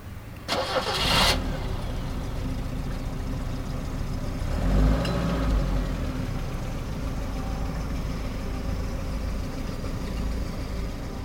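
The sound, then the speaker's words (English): An old, battered clunker car's starter cranks briefly before the engine catches, then settles into a rough, steady running rumble with a revving surge midway, fairly loud, as the car drives away. “brushed the rust off the seat of his pants and watched Trevor drive away”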